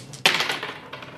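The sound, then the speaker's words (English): Four dice clatter onto a hard surface with a sharp, bright burst of rattling that tumbles and fades, followed by a softer click near the end, landing with two sixes. No voices. “Yeah, but four dice instead of five.”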